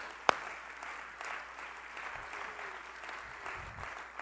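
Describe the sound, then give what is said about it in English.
A church audience claps their hands unto the Lord at the pastor's urging, a steady, dense wash of applause opening with one sharp, loud clap before settling into continuous clapping. “Come on, clap your hands unto the Lord.”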